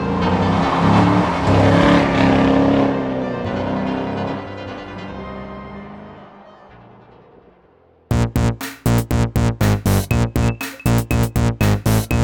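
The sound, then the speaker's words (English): A loud car engine revs and roars past, its sound sweeping and fading over several seconds, then gives way to a steady, rhythmic chugging pulse. No one speaks. “When does a car stop being a car?”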